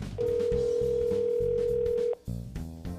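A telephone dial tone: one steady, mid-pitched tone holds unchanged for about two seconds, then cuts off abruptly, playing over a busy, layered background.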